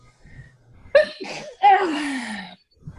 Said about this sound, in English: I had a sneeze.